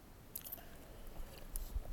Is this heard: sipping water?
yes